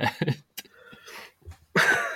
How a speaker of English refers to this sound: Paul's just watching me cough up my guts on the webcam